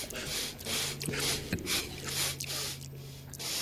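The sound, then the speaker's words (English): A rapid series of loud sniffs and deep huffing inhalations, attributed to Biden going around the White House, several breathy bursts in quick succession over a faint low hum, with no talking. “He's huffing longer, deeper inhalations”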